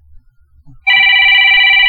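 A loud, steady electronic bell rings continuously for about a second, a bright buzzing trill with several stacked tones, starting abruptly after a quiet moment with faint low rumble.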